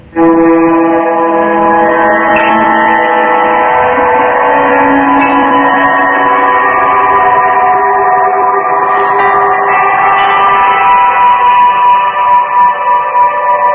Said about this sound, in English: So is that like a delay feeding into a pitch shifting reverb? Something like that. It just says spooky on it. It's spooky number three.